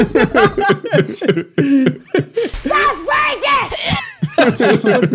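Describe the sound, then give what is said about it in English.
A child screams loudly in several strained, wavering bursts that rise and fall in pitch, broken up by short coughing or sputtering sounds over about five seconds. “It's a kid screaming, that's racist.”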